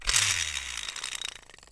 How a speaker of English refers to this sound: Speaking of wheels, we have a wheel of topics. Let's spin it.